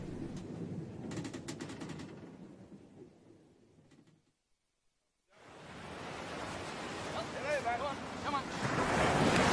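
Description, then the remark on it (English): Deep rumbling sea and gusting wind on a sailing voyage with the Indian Ocean ahead roll on for a few seconds, cut off briefly, then return as a louder, hissing wash of waves and wind that keeps building. “So, Ishmael, there is the Indian Ocean ahead of us, and the sun behind us.”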